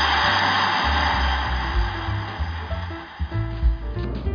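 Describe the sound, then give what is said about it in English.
A steady wash of audience applause for the mothers of Montgomery Bell Academy in Nashville, Tennessee fills the whole stretch, dense and continuous with no single claps standing out. A low humming tone runs underneath, and no one speaks. “this week we just had to start with a round of applause for our MBA mothers”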